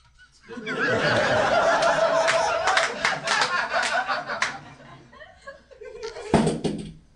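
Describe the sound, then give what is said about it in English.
A cane is thrown down like a mic drop and hits the floor with a single sharp clatter near the end, following several seconds of laughter and scattered clapping from a small group. “For those just listening, … just throwing …'s cane. This is like it's a low budget mic drop.”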